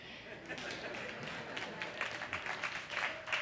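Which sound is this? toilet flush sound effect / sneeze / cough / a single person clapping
a single person clapping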